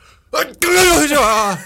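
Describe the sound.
A deliberately forced fake sneeze, voiced by a person right into the mic: a brief sharp intake, a short pause, then a loud, drawn-out, strained burst lasting about a second.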